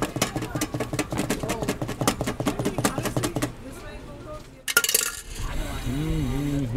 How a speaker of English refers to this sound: Okay, now we are mixing it. It's very cold drink, like pretty much like milkshake, but it has a lot of salsa water in it.